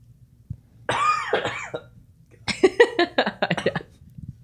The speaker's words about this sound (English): You seem to be coughing a lot.